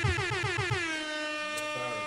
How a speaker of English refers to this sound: You deserve an air horn.